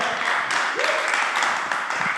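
Steady, dense applause given as a virtual hand clap during a church service to welcome the preacher, a continuous wash of many hands clapping at an even loudness, with no voices rising above it.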